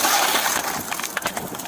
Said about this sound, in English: Cops arrive on the scene to find a pickup truck totally engulfed in flames. There's a man trapped inside. One of the cops uses his baton to smash the window.